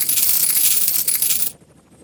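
Dimes sneezed out by a character spill out in a rapid cascade, some flying out the door, a dense metallic jingle and clatter lasting about a second and a half before stopping abruptly, leaving only a faint low hum.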